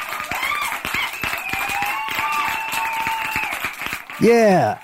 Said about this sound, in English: Can we get a round of applause in there, Max, for it?